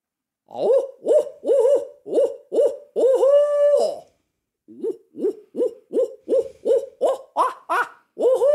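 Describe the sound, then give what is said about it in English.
A person imitates an owl with a long run of rhythmic, loud hooting calls, including a drawn-out hoot midway and rising, wavering hoots toward the end, with no talking. “You are a very effective owl hooter, probably a little better than average.”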